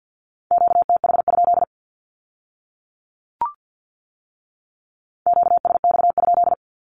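Two fast bursts of Morse code Q-codes sent at 50 words per minute in a steady mid-pitched tone, a short click in the pause between them, clear with no voices.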